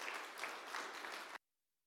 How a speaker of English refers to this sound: So without going on too much more, please give them another round of applause because this is not an easy thing to do.